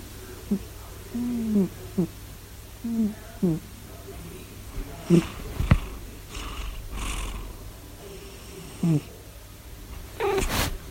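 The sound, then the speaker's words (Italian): A cat lying on a sweater on a bed snores, a series of short, low, throaty bursts at irregular intervals, some rising slightly in pitch, with a brief clatter midway. “Mazinga sta russando.”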